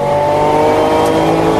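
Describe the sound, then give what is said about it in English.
A vintage race car engine revs, roaring loudly and steadily, its rich harmonic drone holding constant for under two seconds with no voices. “People think I'm crazy because I drive my super expensive vintage race cars in vintage races that involve a lot of other cars and concrete barriers.”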